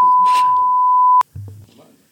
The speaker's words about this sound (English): Hey. You said beep. Look. You said beep.